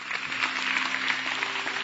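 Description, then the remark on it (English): A crowd bursts into dense, continuous hand clapping for the Lord, a steady wash of overlapping claps at a strong, even level, with a faint low hum beneath. “Come on, somebody give the Lord a mighty hand clap, shout.”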